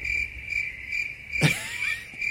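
Crickets chirp in a steady, high-pitched trill that pulses evenly throughout, with a single brief knock partway through. No one speaks.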